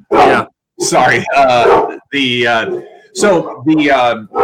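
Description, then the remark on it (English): Dogs bark in a quick run of loud yelping bursts, several short barks following one another with brief pauses between them. “And I took Bradish because as I wrote this article up, and my dogs obviously agree.”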